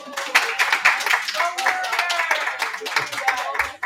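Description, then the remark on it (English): A group at Avicoll's on Oswego Road in Liverpool, New York, breaks into steady applause for the Liverpool Warriors girls tennis team, dense overlapping claps running for about four seconds, with a few voices cheering and calling out underneath. “So before we get started, can we please give the tennis team a round of applause?”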